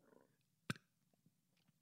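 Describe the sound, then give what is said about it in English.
A single small, short burp pops out against near silence, a brief throaty blip followed by a few faint low gurgles. “Hold on, here comes another burp.”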